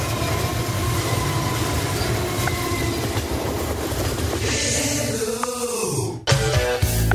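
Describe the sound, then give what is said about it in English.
Railroad sound effects used by radio station WOWQ-FM, called The Train, from Waverly, Tennessee: a loud train rumbles past with rhythmic clickety-clack of wheels on rails, a rising metallic whine near the end, then an abrupt cut to a fresh burst of rolling noise. “The station calls themselves The Train, with lots of railroad sound effects”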